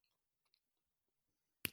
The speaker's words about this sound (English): Oh, actually, I've got one. It's the sound of a microphone cable clicking into itself.